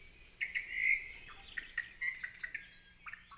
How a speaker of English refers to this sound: You can often hear the calls of cattle egrets as they fly overhead in flocks to their roosting areas at the end of each day.